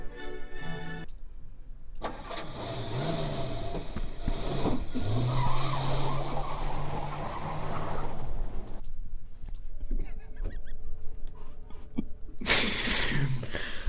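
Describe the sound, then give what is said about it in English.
Car tires squeal loudly and continuously for several seconds as a car comes squealing up to the curb on Division Street at night, with engine noise underneath, then a brief lull before another burst of noise. “Suddenly, a car came squealing up.”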